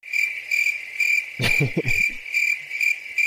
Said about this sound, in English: I meant to hit the rim shot. I didn't mean to hit the crickets.